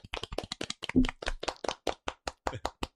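A small group of people clapping briefly, sharp, irregular, overlapping claps at a fairly quick pace for about three seconds, with no talking.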